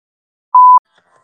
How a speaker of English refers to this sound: Reverb. I think they call it feedback. Let's be professional about this. Feedback.